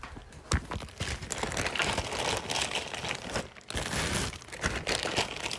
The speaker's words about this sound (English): And I keep extra alcohol wipes and needles up here so that I can refill it if I don't have any more. So I'm just gonna put some extra alcohol wipes and needles.